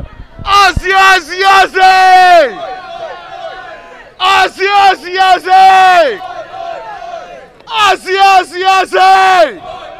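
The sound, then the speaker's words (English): A wrestling crowd, being fired up by a wrestler, chants and yells together in three loud, rhythmic bursts of several syllables each, with brief lulls of murmuring between them. “… doing his best to get this crowd going.”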